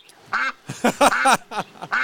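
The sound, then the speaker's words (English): A duck quacks in a quick series of about six or seven nasal, raspy calls, loud and clear with no talking over them. “Speaking of ducks.”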